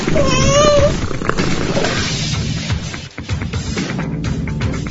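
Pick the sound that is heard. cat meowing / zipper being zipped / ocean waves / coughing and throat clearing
cat meowing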